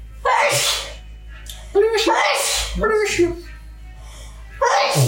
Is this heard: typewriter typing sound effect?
no